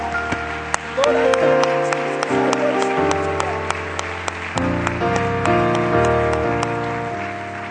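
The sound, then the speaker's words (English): A church audience claps their hands unto the Lord before being seated, over sustained, chord-changing keyboard or organ music, the claps forming short sharp bursts that stay steady and fairly loud throughout. “Before you're seated, would you clap your hands unto the Lord?”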